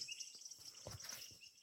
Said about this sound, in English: sounds of the jungle. Yeah. It's a nice ambient... It is, it's really relaxing me. Set of noises, isn't it?